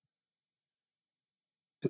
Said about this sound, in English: Talking's great for this cough, by the way. Yeah, I can tell.